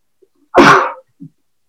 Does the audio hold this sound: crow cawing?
no